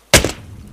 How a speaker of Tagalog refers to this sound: Napapitlag sila na may biglang tumama sa windshield ng sasakyan at parang may bumangga.